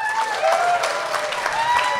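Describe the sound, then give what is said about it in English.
A crowd claps steadily, dense and fairly loud, with a few faint whoops or cheers rising over the sustained applause, applauding if they have seen the film Strange Brew. “But maybe that's the thing, is like, applaud if you've ever seen Strange Brew.”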